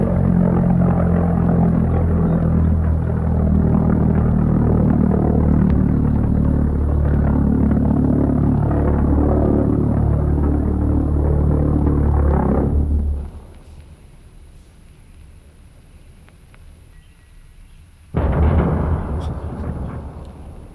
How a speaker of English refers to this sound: Airplane taking off and crashing. That is the sound you would hear standing on your farmland outside of London as the V1 buzz bombs came flying over.